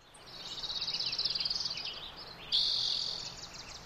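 A lively outdoor chorus of many wild birds singing at once, with rapid high trills and chirps overlapping in two bursts, steady, over a soft background hiss. Recorded in spring 2004 at Sugarloaf Ridge State Park in Northern California.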